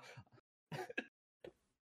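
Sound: cough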